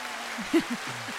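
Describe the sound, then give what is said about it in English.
A steady wash of applause, even and unbroken for the whole moment, with a short low voice murmuring briefly underneath. “Give you some applause.”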